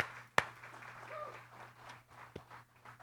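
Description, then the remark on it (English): Soft, scattered applause from a crowd for the soldiers, a wash of faint clapping broken by a couple of sharper, louder claps, with a steady low hum underneath. “Give all the soldiers a big round of applause.”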